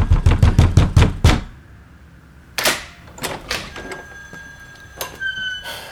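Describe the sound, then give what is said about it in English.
A rapid burst of about eight loud knocks on an apartment door, followed by a pause and then a couple of scattered thuds and faint rustling. “What does the sign say on my door? Oh, yeah, I know. What does the sign say, Eddie? It says, only knock if it's an emergency.”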